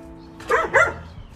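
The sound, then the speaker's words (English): Two quick barks from dogs outside, in close succession and fairly loud, over a low steady background hum with no talking. “Oh, there's also dogs outside.”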